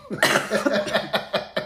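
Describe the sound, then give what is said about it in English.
A loud coughing fit: one harsh initial cough followed by a rapid series of shorter, rhythmic coughs, with no speech. “Excuse my cough.”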